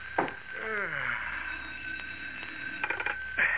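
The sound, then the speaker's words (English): An old-fashioned telephone on a sheriff's desk in a small police station in Willow Heights rings steadily with a shrill, buzzing tone just after 11 at night, while the sheriff lets out a long yawn partway through and reaches for it; faint clicks and rustles follow near the end. “In Willow Heights, the well-to-do suburb 18 miles from the heart of Metropolis, it is just after 11 o'clock at night, as in his small police station, Sheriff Johnson yawns and reaches for the ringing telephone on his desk.”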